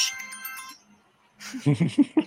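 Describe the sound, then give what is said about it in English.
A phone ringtone chirps out a short bright melody for under a second for an incoming call, then stops as a voice starts talking loudly. “Oh wow, I got my phone excited.”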